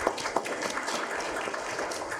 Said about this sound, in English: So welcome to the 37th annual BEA conference. This is the first workshop of the conference, so give yourselves a hand clap for just being here.